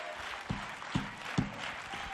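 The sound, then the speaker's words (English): A church audience claps their hands unto the Lord in a steady rhythm, about two beats per second, over a constant wash of crowd noise. Nobody speaks clearly. “And you ought to be clapping your hands unto the Lord.”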